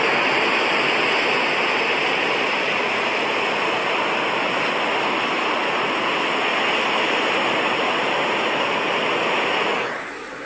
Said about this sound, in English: So just listen. Just listen. This is the ocean waves.